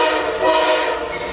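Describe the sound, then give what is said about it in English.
A loud, steady train horn blares continuously over the rumble of a train passing an at-grade crossing in Waukesha, with no one speaking. “Train tracks all over, at grade crossings all over Waukesha, and these clowns got stopped at a train.”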